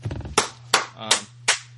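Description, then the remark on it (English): Four sharp hand claps in a slow, even rhythm, fairly loud, over a low steady hum with a brief murmur at the start. “You're clapping.”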